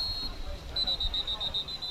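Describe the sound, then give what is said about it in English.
A referee's whistle blows from the sideline during a Riverdale versus Warriors football game on third and 8, as Riverdale takes a timeout: a shrill, high, steady tone that swells into a louder warbling trill partway through, over a low rumble of crowd noise. “Need a first down, Warriors, and whistles.”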